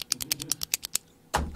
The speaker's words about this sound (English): He just kept clicking the fucking pen. He just kept clicking the pen, and I didn't want to say anything. I was like, what do I say?